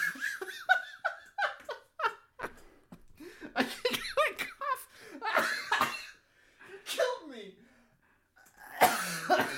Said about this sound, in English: And you know what that means, since I almost coughed to death?